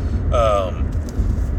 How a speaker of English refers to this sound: Please, truck, slow down.